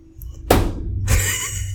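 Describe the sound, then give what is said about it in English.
A sharp, loud slap against a table, followed moments later by a second crash with bright clattering and rattling that lingers to the end. No one speaks. “If I want to slap it on the table, slap it on the table.”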